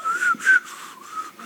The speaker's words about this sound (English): He's whistling while he reads his Bible.